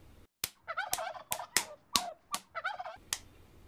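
A turkey gobbles in several rapid, warbling bursts, punctuated by sharp, loud slapping clicks at irregular intervals. No one speaks.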